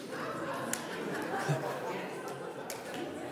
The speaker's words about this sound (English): Okay, stop talking to each other.